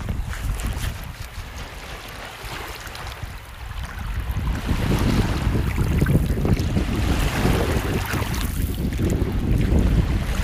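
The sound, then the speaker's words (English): Waves wash against the shore in winter in a continuous, rushing roar that swells louder midway, mixed with gusty wind buffeting the microphone. No one speaks. “Right there is the sound of some waves hitting the shore, baby.”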